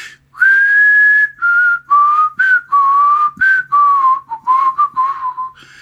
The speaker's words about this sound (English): Anybody remember this tune right here? I'm gonna gamble and whistle it and see if anybody remembers it.